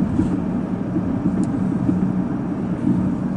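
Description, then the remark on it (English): A steady, low rumble of a car idling while stopped in road traffic, a continuous engine and road drone with no speech, holding even and moderately loud throughout. “Let me just double check that as I'm stopped here in traffic a little bit.”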